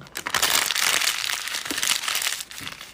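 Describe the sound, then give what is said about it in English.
Crisp, crackly crunching of someone chewing a chicken nugget, a dense run of bright crinkly bites with no talking over it. “Hear the crunch of the chicken nugget.”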